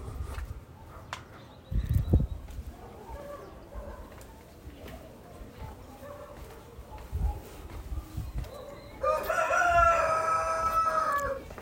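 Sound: chickens crowing and clucking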